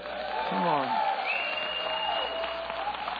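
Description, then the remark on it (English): An audience cheers and applauds steadily for the worship team, with dense clapping under whoops and a few rising shouts, loud throughout the short burst. “Yeah, I think we should just give them one more cheer.”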